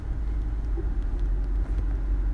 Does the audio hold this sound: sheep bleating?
no